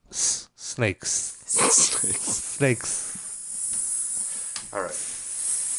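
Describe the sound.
Someone imitates a snake with several drawn-out, breathy hisses, fairly loud, mixed in with short voiced vocal sounds.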